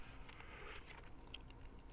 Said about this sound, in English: But of course, now it's starting to rain.